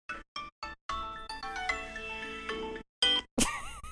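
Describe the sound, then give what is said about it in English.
A Tile Bluetooth tracker tag, its button pressed by accident, plays its electronic chime: three short beeping notes, then a bright sustained jingly melody with a few final warbling tones, moderately loud, with no voices. “I was like, what is that noise? That's me pushing a tile button in error.”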